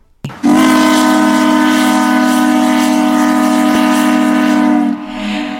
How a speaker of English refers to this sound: And so now, every time the Owen Sound Attack hit the back of the net at the Bay Shore, the horn will blow through the arena speakers. So, since we're taking our first break, let's give a listen to that old whistle.